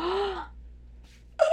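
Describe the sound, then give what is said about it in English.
A voice imitates gasping for breath: a strained, rising vocal gasp, a brief pause with a faint breathy hiss, then a second sharp, high gasp cut off at the end. “Like, I woke up from my nightmare. Gasping for breath, so...”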